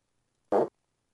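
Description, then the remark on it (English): A man raises up as he lets out a single short, buzzy fart, loud, lasting under a quarter second, with quiet before and after. “He raises with the fart.”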